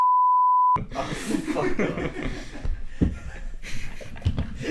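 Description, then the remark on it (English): A steady, loud censor bleep tone plays alone for under a second, then cuts off abruptly as people begin talking and laughing. “I'm going to bleep that. I have to bleep that.”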